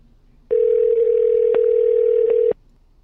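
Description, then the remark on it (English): A single steady telephone ringing tone sounds for about two seconds, clear and fairly loud, with brief quiet before and after and no voices, as a call is placed to the trucking company Purdy Brothers. “Let's get them on the phone right quick.”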